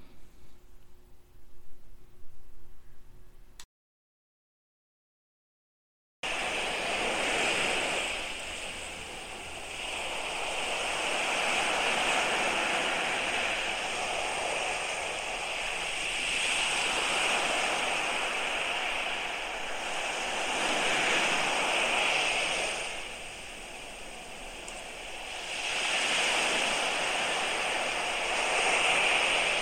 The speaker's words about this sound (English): Here in Mexico, you can hear the sound of waves washing ashore. I could sit for hours and just listen to the waves. There's something about the water that seems to soothe the soul.